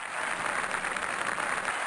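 A crowd applauding, a dense, steady wash of many hands clapping at once with no individual claps standing out, holding at an even level for the full two seconds with no voices.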